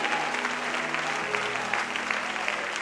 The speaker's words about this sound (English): Would you shout in Jesus' name? Would you clap your hands before you're seated?